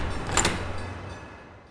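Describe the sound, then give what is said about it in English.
Crusher opens a door to the big room where promos are being cut, with a brief rush of sound and a low rumble, then the noise settles into a fading hum. No one speaks. “Crusher opens the door.”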